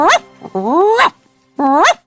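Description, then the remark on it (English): An Akita dog named Hachi answers its owner with three clear vocal sounds: a short yip, a longer rising whine-like howl, then another brief rising whimper. There is no speech. “Don't know about them all, but my Hachi definitely is very intelligent. Right, good boy?”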